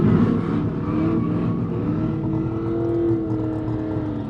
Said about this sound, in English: He organized this annual muscle car event in the quiet mountain village of Orsa. Owners of Ford Mustangs and Plymouth Barracudas show off their gleaming hot rods in a big grass field. Others take turns racing down an airstrip.